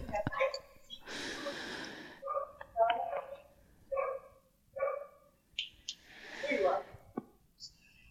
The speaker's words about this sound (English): Hopefully the dog will stop barking. I've gotten far away from the dog as I can get.